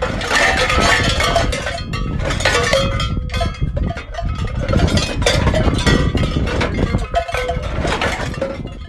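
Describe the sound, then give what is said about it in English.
Many cowbells on grazing cattle clank and jangle continuously in an irregular, overlapping rhythm, their bright metallic tones ringing loudly together with no voices present. “Line of sight is limited, and sounds emitted by the bells can carry.”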